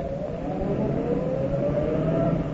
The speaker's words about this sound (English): There's a car. I see it. It's going to turn up our drive.